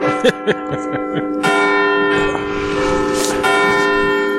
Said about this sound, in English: I love church bells.